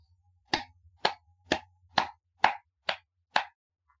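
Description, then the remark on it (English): A faint golf clap: seven soft, unhurried hand claps in a steady, even rhythm, each a short crisp pat with nothing else heard around them. “No, this is a golf clap, listen. Very faint.”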